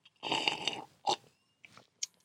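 A noisy slurp of Wolf Blass wine drawn in over about half a second during a wine tasting, followed by a few short, wet mouth and swallowing sounds, with no talking.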